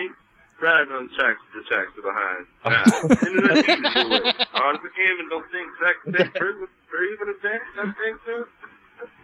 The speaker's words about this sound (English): And he just goes away for a while. How did you record backwards in your phone?